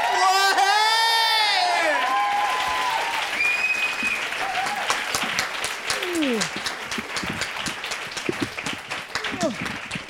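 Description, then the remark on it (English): Loud, steady applause from a large audience welcoming a guest onto the stage, with scattered cheers and whoops, some high-pitched shouts rising over the dense clapping that continues throughout. “Keep clapping, this might take a while.”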